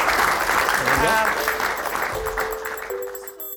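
A round of applause: steady, dense clapping from a group that holds fairly loud for a few seconds, then thins out and fades, with a few short tonal pings near the end.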